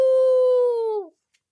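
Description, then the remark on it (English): A person imitates a wolf howl: one loud, sustained, mid-pitched vocal tone that holds steady for about a second, then slides downward and cuts off, with nothing but silence afterward. “That was a good howl.”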